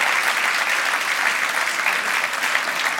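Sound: audience applause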